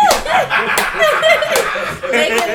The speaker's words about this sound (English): They be clapping like this.